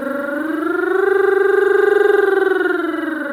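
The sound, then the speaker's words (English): A single sustained sung tone slides smoothly and slowly upward, then eases back down, one continuous wordless glissando through quarter tones, steps smaller than semitones, lasting a few seconds at steady, moderate loudness. “What I'd like you to do is to see if you can make the glissando more slidey.”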